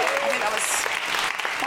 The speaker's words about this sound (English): If you feel moved by the spirit to give a round of applause at any time, don't hold back.